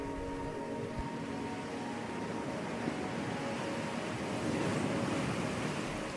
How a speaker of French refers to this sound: Désormais, le soleil a totalement disparu à l'horizon et l'obscurité a pris place. Seul le bruit des vagues et le sable sous vos pieds restent inchangés.